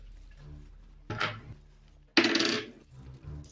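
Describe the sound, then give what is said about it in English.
Four dice rolled for an attack in a tabletop game clatter and rattle across a hard surface in two bursts, a short one followed by a longer, louder tumble with bright clicking hits, then settle into quiet. “I'm gonna say it's going here, and I'm going to roll 1, 2, 3, 4.”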